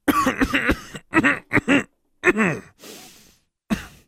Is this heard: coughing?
yes